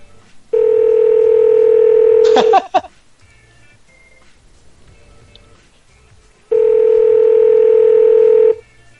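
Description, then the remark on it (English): Telephone ringback tone over the line of a call placed through Google Voice: two long, steady electronic buzzing rings about four seconds apart, with a quick burst of keypad beeps at the end of the first ring. “It's ringing. Oh, yeah, it's ringing. It's because of Google Voice.”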